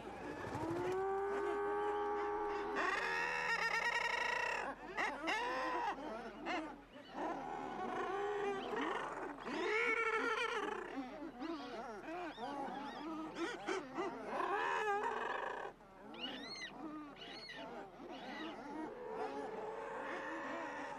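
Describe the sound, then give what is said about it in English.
A dense colony of guillemots, constantly arguing, fighting and jostling with their neighbours for space, calling over one another: a continuous wash of harsh, growling, rolling cries rising and falling in waves, loud throughout with no speech. “But in doing so, they produce these really beautiful waves of rolling laughter.”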